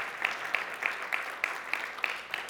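A crowd applauds steadily, dense clapping with a few sharper claps standing out at regular intervals. No one speaks over it.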